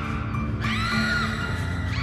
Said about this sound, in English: The response to this episode was not what I was expecting it to be. A lot of screaming.